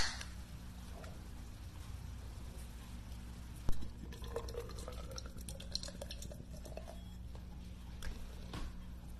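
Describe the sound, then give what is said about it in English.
A beer can cracks open with a sharp snap, followed by a steady fizzing pour into a glass, the filling tone rising as the liquid gurgles and bubbles. “Open a can of beer.”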